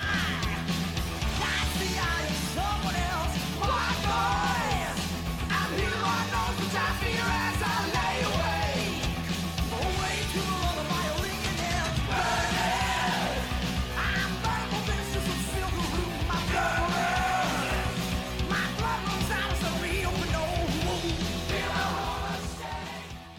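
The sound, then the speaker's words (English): A 1984 heavy metal song by a band from Saskatchewan plays loud and dense throughout, with distorted guitars, pounding drums and a high, wailing vocal line soaring over the steady band. “Let's move on to our second track here. Take a listen to this.”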